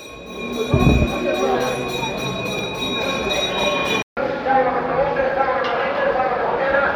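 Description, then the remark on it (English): A steady, high ringing auction bell announcing a sale sounds continuously for about four seconds at a cattle auction, over a busy background of crowd noise and chatter, then cuts off; the crowd noise continues afterward. “In the background, you can hear the bell ringing to announce the sale.”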